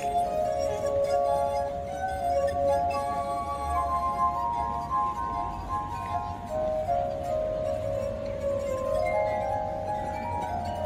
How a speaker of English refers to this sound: This is the sound of water glasses.